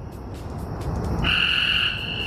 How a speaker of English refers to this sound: The frogs. Oh. From every side of us. Oh, Lord. This is one of those frogs. It was funny because when you got up to try to see where he was sitting right next to us. He would stop croaking.